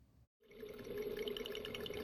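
After a brief moment of silence, a steady, resonant call of migrating whales rises and holds, a low moaning tone with overtones over a hissing, watery underwater background.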